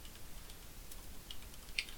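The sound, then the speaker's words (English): Faint, sparse clicks of a mechanical keyboard, a few soft keystrokes spaced apart over a quiet background hiss, with one slightly sharper tap near the end. “Tap, tap, tap. Mechanical keyboard.”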